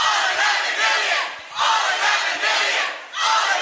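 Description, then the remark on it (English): A crowd of protesters shouts "We are not dreamers" in unison, loud and raw, the chant rising in three repeated surges with brief dips between them. “The protesters start shouting, "We are not dreamers."”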